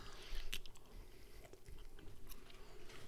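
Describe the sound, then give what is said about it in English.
Close, wet chewing of a sweet-smelling glazed food, with a crisp bite near the start, followed by steady mouth sounds and soft crunches right at the microphone, with no talking. “I'm trying not to do the chewing sounds right in the mic.”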